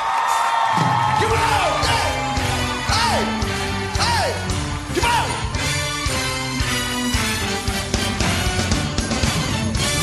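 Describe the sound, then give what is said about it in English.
A packed, standing arena crowd at the Air Canada Centre in Toronto roars and screams nonstop, with piercing whoops and yells rising and falling above a dense, loud wall of cheering that never lets up. “They are standing and screaming.”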